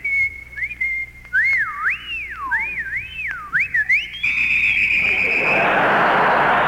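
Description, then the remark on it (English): A loud wolf whistle at a blonde woman in Atlanta that swoops up and down several times, then rises into a long held high note, followed by a swelling rush of noise. “I'm going to whistle at her.”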